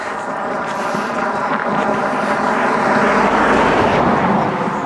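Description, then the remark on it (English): A car approaches along a country lane, coming down quite fast and heard from a long way away; a steady rumbling engine hum with a breathy, wind-like hiss that slowly swells louder over the few seconds, with no voices. “There's an actual car coming down this country lane. Can hear it from a long way away.”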